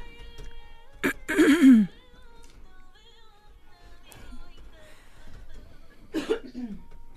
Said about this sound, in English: We must stop the cough